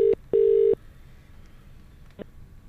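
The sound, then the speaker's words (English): A telephone ringing tone heard down the line as a listener's phone is called so the call can be recorded: a clipped beep, then one steady low beep, followed by a quiet pause and a faint click as the call connects. “So we told him to just leave his phone off so we could call him and record it.”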